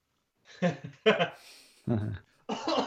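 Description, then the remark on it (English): A harsh COVID coughing fit: four or so rough coughs in irregular succession over a few seconds, loud and raspy, with brief pauses between bursts and no talking. “The COVID cough gets me a little bit.”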